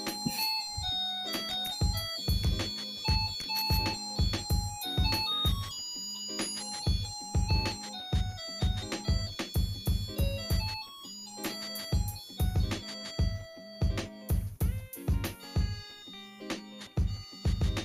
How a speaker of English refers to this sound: Guys, I'm so sorry for that. That was my annoying clock. I do not know why, but this goddamn clock always ring every hour. I do not know why. I apologize for the clock, guys.